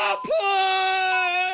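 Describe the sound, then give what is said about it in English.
A voice imitates a woman in labor giving birth: a short strained cry, then a long, loud, sustained wail held on one steady high pitch with rich harmonics. “It's that going through labor, having a baby.”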